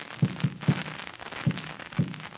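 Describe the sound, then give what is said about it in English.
Muffled taps on a wall spelling out SOS in Morse code: about five dull, low thuds in an uneven rhythm, with no voices, over a faint background hiss. “That was the signal SOS.”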